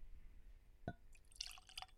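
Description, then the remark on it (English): A drink is poured into a glass: a single clink or drip, then a short burst of light splashing and bubbling liquid. It is quiet, with no talking. “Let me pour this because I'll spill it.”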